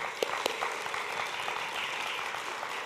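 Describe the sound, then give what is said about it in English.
A crowd applauds steadily, a dense wash of many hands clapping at moderate volume with a few sharper claps standing out near the start, no voices heard. The audience is applauding all the moms on Mother's Day. “Big round of applause to all the moms.”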